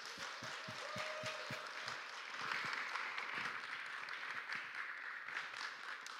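A crowd claps steadily for several seconds, a dense, even wash of applause with a few sharper individual claps standing out at the start, sustained at a moderate level throughout.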